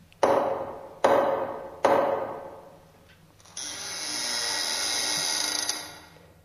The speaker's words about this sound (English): We walk up to the massive wooden door. I reach for the door knocker in the center, but before I touch it, the knocker knocks all by itself.